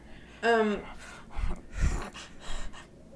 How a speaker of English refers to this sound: We're breathing way too much right now. I was trying to do that on purpose, but I knew it was going to come out as a laugh, so I had to stop.